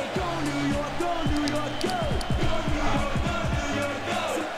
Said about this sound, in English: There's Phil Jackson, fresh off leading the fucking Patroons to victory. Head coach Phil Jackson. Boo, they're booing him.